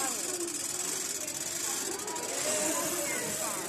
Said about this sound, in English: I'll get this chair. It's a very noisy chair now, so.